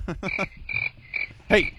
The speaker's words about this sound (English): Hey, you shut those goddamn crickets up.